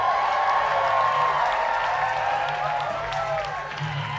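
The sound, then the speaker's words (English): A large audience at a live show claps and cheers steadily for Jody Foster, a dense wash of applause with whoops and shouts rising through it, sustained loudly from start to finish. “Please keep it going. Don't stop clapping for Jody Foster.”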